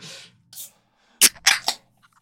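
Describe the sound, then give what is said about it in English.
A soda can popping open: a brief airy hiss, then a quick cluster of sharp, loud cracks and snaps with fizzy tails, followed by quiet. No one speaks. “Pop that right into the mic.”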